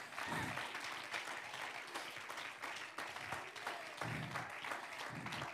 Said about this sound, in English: God is good. Somebody just give him a hand clap of praise right now.